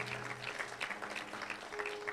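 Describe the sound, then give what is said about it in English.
A church audience claps steadily and continuously to celebrate Jesus' birthday, a dense wash of many hands applauding together with no break, with a faint low hum underneath. “Everyone, let's celebrate Jesus' birthday. Let's clap it up.”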